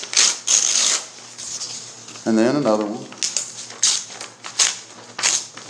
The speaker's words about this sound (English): This paper's not tearing very well.